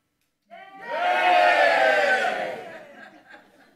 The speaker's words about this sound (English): That wasn't a bad cheer, but it wasn't a good cheer. That was a test the water cheer, wasn't it? Let's give a good cheer.